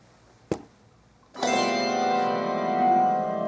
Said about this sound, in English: So do it again, and I'll conduct a chord. Let's see what it sounds like. You play a bell, and I'll do the conductor.